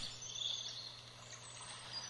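Faint, high-pitched chirping of birds in a caller's house trills steadily in the background over a low, constant hum, with no one speaking.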